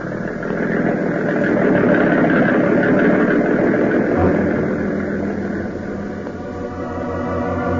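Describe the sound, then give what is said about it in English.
A motor runs steadily and loudly, a continuous droning rumble that holds at a fairly even level throughout, with no voices present. “Now, turn that motor over, baby.”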